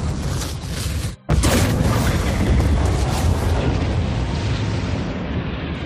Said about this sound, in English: That is the new sound of the I can't remember the name of it now, the cannon on the Idris, in case anyone's wondering, or one of the leaked sounds.